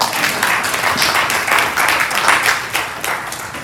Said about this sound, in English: Get the Lord a hand clap of praise.